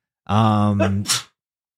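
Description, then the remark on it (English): A single loud sneeze: a drawn-out, voiced "ahh" build-up followed by a sharp, hissy burst that cuts off abruptly, with silence after. “Bless you.”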